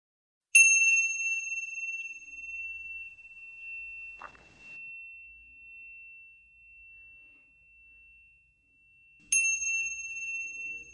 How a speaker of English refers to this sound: would you like to ring the chime so we can just let that sit for a few seconds? Yes, let's do that. Here we go.